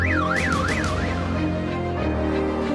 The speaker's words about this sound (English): They can also pick up a rock and throw it at the nearest car to trigger the alarm.